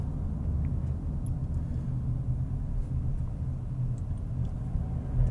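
A heavy truck rumbles along the road in traffic, its deep, steady engine drone filling the whole stretch without any speech over it.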